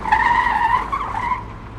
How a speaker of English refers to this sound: A car careens out of a side street a few blocks ahead, fishtails around the corner, and speeds past you. Then it screeches to a stop and backs up.